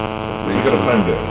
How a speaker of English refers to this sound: Do you know what? A load of interference just kicked in on the mic at that point.